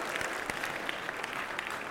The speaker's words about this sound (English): Yeah, clap it up